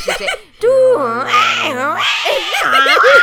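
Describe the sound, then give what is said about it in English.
A voice mimics a 56K dial-up modem handshake, with warbling pitch sweeps, a steady low tone and hissy static bursts, loud for about three seconds. “You sure it wasn't just someone connected to the internet?”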